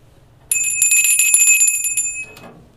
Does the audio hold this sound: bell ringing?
yes